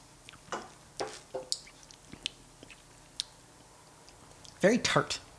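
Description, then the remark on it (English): People taste a tart, pear-scented beer with soft sips: a scattering of small wet slurps, lip smacks and swallows spaced irregularly, followed near the end by a short voiced murmur. “It's very, a lot of pear, but I mean, let's take a sip.”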